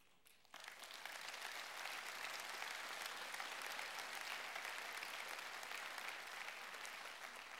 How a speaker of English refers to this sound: We clap, we applaud, and indeed we should.